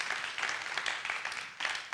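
A crowd applauds steadily for a couple of seconds, a dense wash of many hands clapping at once, slightly distant and swelling briefly near the end, with no voices on top.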